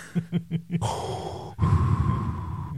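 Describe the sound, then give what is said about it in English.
A person mimics Darth's heavy mechanical respirator breathing: four quick breathy puffs, then a long hissing inhale followed by a loud, raspy exhale, with no talking. “I should bring like just get that breathing in a loop.”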